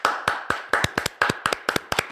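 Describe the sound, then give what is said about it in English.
A small group of hosts claps briskly to cheer for Krampus, a quick run of sharp, bright claps at a fairly even pace over a faint steady hum, with no voices. “We're cheering a person who whips kids.”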